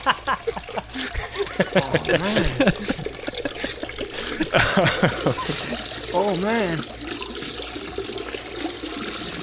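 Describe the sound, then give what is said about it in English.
Two steady streams of urine splash and trickle continuously against the side of a cave, loud, as the Star Trek character Kor relieves himself, while a man talks and exclaims over it. “Kor was just firing like two streams of hot piss into the side of the cave.”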